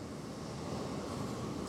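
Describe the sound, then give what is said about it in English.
A steady, low wash of ocean surf on a beach rolls on without pause, a soft roar of waves with no distinct individual crashes and no voices. “I don't know if you guys can hear the waves crashing, but we are back at the beach”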